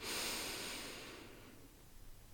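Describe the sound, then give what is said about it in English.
A single slow, deep breath drawn in, airy and rushing at first, then gradually fading away into quiet. No one speaks. “So when you're breathing in for 3 seconds, you're breathing in golden light.”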